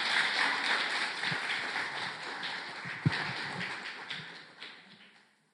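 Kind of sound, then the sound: crowd, audience applause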